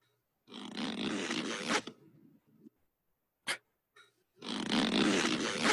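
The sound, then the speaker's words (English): Two long, loud, ripping zips of a bag's zipper, about a second and a half each, as a man packs up to leave, separated by a pause with a brief sharp tug and faint rustling of the bag in between. “It's the zipper when he's packing up, getting ready to leave.”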